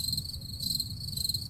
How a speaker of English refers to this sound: I can't do sound effects, so... I played it. And then the crickets